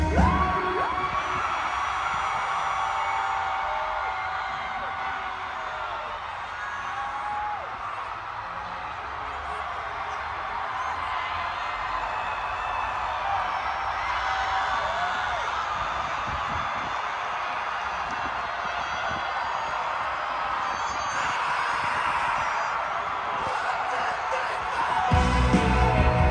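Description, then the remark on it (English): A huge festival crowd at Coachella screams together in one long, unbroken roar, trying for their longest and loudest scream, loud and steady throughout, with no talking, swelling slightly louder right at the end. “Okay, Coachella, we've all been practicing our longest and loudest scream.”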